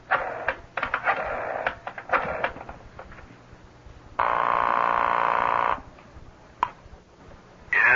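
A telephone handset is lifted and dialed, a run of clattering clicks followed by a steady electronic tone, another sharp click, then the tone starts again. No one speaks.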